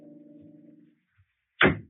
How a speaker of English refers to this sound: so I went over to the elevator without talking to him and came directly up to the fourth floor and knocked on her door.